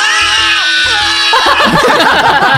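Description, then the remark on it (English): A loud, strained male yell by Tom Cruise, sampled in a video game, plays twice in quick succession like a repeated sample, then gives way to a dense, noisy burst of music. “That is actually Tom Cruise yelling, and then they just sampled it twice.”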